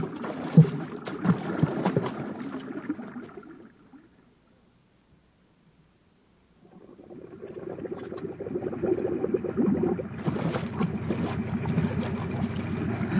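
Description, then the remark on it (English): Loud water splashing and churning as people dive under the water of a flooded shaft, fading into a few seconds of silence, then returning as steady sloshing and splashing as they move through the water. No one speaks. “We'll dive under long enough to get to a place where the water doesn't fill the shaft.”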